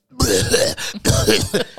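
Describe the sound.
A voice imitates a harsh, throaty cough, two rough bursts in quick succession with a short gap between them, loud.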